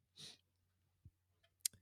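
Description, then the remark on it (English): A soft breathy exhale, then a few sparse, quiet clicks of keyboard typing spaced irregularly over a second, as someone types 'rainbow' into a search to look up the beer Rainbow Rush, with no one speaking. “Okay, I didn't know what to expect by typing in rainbow.”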